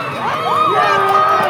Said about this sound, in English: Neighborhoods erupted in cheers and honking horns.